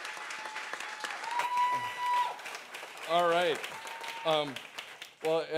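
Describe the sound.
A crowd applauds steadily, a dense patter of many hands clapping throughout, while a man's voice begins speaking over the tail end of the applause.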